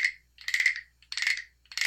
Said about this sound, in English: it's a little wooden frog with a hollowed out, like hollowed out, and it's got ridges on its back, and it's got a stick in its mouth